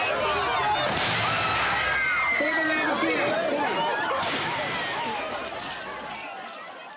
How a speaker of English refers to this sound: The crowd can't be pacified, so the soldiers don their gas masks and, on the order of their leader, fire CS gas canisters at the base of the gate, engulfing everyone in white smoke.